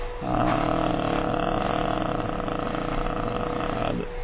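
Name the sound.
vacuum cleaner running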